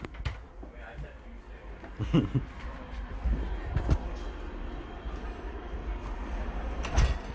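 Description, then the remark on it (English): A train rumbles past, a steady low roar broken by a few metallic clanks and thumps. Faint voices can be heard now and then beneath it. “Oh, we got the train going by.”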